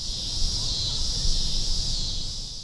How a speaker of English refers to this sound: Cicadas. I'm Curious City producer Jason Mark, and Amy feels like these cicadas that are driving her nuts seem louder than usual. And she wants to know, are they actually louder this year? Are there more of them this year?